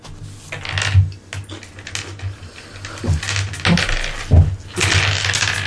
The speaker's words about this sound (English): Oh, that was so many dice.